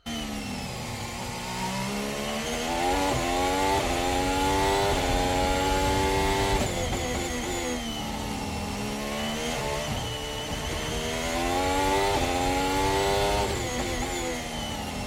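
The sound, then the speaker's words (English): A race car engine screams steadily and loudly on a bumpy track, its pitch surging and dropping abruptly a few times as the car bounces off the ground. No one speaks. “Do you hear that again? That off the ground? That's the car bouncing off the ground.”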